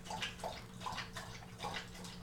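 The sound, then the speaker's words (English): Close, steady lapping of water as a pet drinks from its dish, wet slurping splashes repeating quickly and rhythmically, with no voices. “That's right, Lucas, get you some water. I didn't think about the fact that recording right next to the water dish was really the best idea.”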